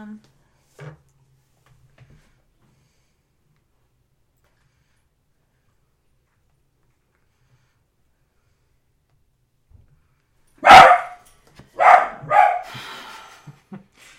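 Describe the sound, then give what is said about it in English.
A dog barks several times in a quick, loud burst after a long stretch of near silence, with a few sharp yaps at irregular intervals. “Curse those dog here.”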